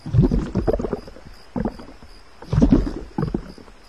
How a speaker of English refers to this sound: Said the river, as oars dipped in and out of the water.